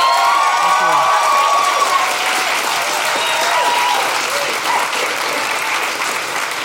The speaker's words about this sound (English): So we really appreciate it. A big round of applause for Jordan Raskopoulos.